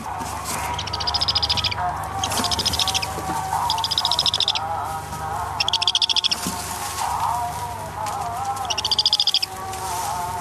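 Birds call in loud, rapid bursts of high chattering, repeating every couple of seconds over a steady background of softer chirps and a low hum. From the film All That Breathes, in a basement in Delhi where wounded kites and other birds are treated.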